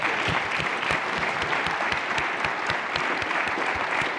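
A room full of people claps steadily and warmly, the dense patter of many hands continuing evenly throughout at a fairly loud, close level with no talking.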